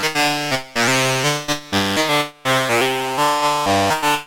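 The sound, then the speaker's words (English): A Noise Engineering Basimilus Caritas Alter drum module in a modular synthesizer plays a stepped sequence of loud, buzzy, horn-like tones, each note held about half a second before jumping to another pitch, with brief gaps and no voices. “I'm going to use another new module, the Basimilus Caritas Alter for noise engineering.”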